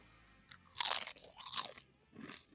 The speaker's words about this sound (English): Those sound delicious. I'm just eating some boardwalk salt and vinegar chips.